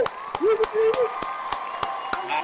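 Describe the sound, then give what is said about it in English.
A short round of applause for playoff pick'ems: sharp, evenly spaced claps, about three per second, from what sounds like one or a few people, with a voice talking over them. “Let's give it up for a round of applause.”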